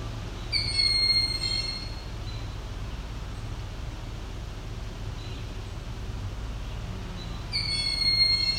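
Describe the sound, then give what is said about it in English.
A young hawk screams for food twice, shrill drawn-out cries near the start and again near the end, over a steady low rumbling background. “My guess is this is a young bird who needs feeding.”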